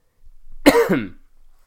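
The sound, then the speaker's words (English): A single forceful cough from a person who is sick breaks into a rough throat-clearing rasp, lasting about half a second before trailing off into quiet. No talking. “I apologize in advance if I'm sniffling or coughing a bit in this episode, because I am sick”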